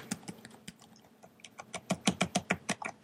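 Typing on a computer keyboard: scattered key clicks at first, then a fast, steady burst of sharp taps that grows louder toward the end, with no voices.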